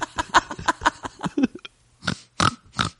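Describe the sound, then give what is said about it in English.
A voice imitates a pig with a quick run of close, rhythmic oinks and grunts, then a pause before a few louder, breathy snorting grunts. “Send a pig over to ask if it's a good time.”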